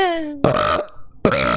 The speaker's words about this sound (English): Bro, your mic, I didn't hear anything. I burped.